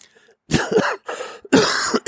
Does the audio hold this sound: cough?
yes